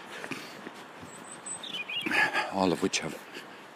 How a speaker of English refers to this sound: did you hear that bird?